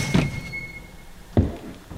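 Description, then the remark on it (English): A store's screen door is flung back and slams against wooden siding twice, about a second apart, each a heavy bang with a short rattling decay. A faint thin tone hangs briefly after the first hit. “"Screech!" cried the spring on the screen door as the door flung back against the door's siding with a bang.”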